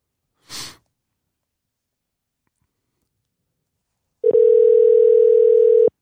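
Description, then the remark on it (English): After a brief breathy exhale and a long pause, a single loud, steady electronic ringback tone sounds for about a second and a half, like an outgoing phone call ringing. “Yeah, because we got the phone hooked up directly to this.”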